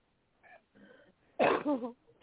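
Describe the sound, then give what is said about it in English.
A couple of soft snuffling breaths, then one loud, honking nose blow lasting about half a second, with no talking. “I got to blow my nose.”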